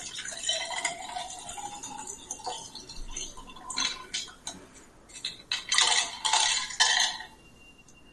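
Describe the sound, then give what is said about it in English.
A stirred cocktail with lemonade is strained into a highball glass, holding back most of the ice, which rattles and clinks against metal and glass in bright, uneven bursts over a soft pouring hiss. No one speaks. “We're supposed to strain that, we don't want all the ice, into a highball glass.”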